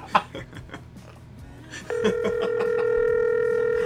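Soft clicks and faint background noise, then a steady electronic phone tone starts partway through and holds loud and unbroken to the end, like an outgoing call ringing on the line.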